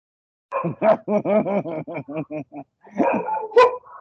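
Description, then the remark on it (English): Two dogs bark in a rapid, yappy string of about ten sharp, high-pitched barks, then a brief pause and another cluster of excited barking. Fairly loud, with no talking. “The nobles in the background that are barking now.”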